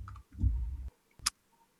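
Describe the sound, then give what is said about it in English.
A few fairly loud mechanical computer keyboard clicks, ending in one sharp clack after a low, muffled thumping, with no one speaking. “Mechanical computer keyboard. What is the difference between a normal keyboard and a mechanical keyboard? Basically, it's this.”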